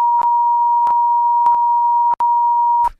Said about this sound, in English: And we should probably beep that.